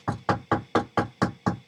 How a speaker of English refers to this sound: Suddenly, there was this knock on the door.